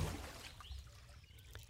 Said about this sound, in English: Down he splashed into the cold, murky water.